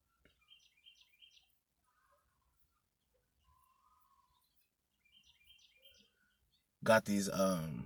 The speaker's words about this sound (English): So it's a Monday. You hear these birds?